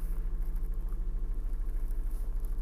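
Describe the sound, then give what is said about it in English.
A car engine idles with a steady low rumble and faint hum, unchanging, with no voices over it, as the driver tries to back out while people keep walking behind the car. “Sorry, I'm trying to back out, and there's people just keep walking behind my car.”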